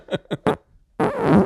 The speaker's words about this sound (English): Did you fart? And no, you're sorry though, right?